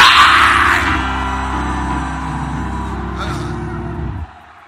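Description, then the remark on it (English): An audience shouts and screams together in response to a preacher, a loud burst that peaks at the start, then settles into a sustained roar of many voices before cutting off abruptly near the end. “Anybody who is shouting, you are arriving. Come on, scream it like.”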